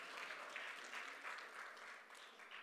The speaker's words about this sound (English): Yeah, I could give her a round of applause for that.